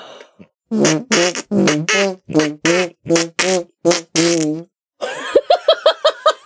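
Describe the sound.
A long string of wet, sputtering armpit-style fart noises made with the hand and arm, about a dozen squelchy bursts in quick rhythm, loud, followed by a faster run of shorter squeaky blurts.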